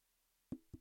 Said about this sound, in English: I don't know if the dinging of my can against the microphone is going to come across very well, but that's what I'm doing.